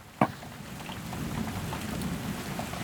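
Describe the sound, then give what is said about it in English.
Rain patters steadily in a dense, hissing wash, with one sharp crack of a drop or knock right at the start; no voices, and the downpour holds fairly even throughout. “The rain starts to ebb away.”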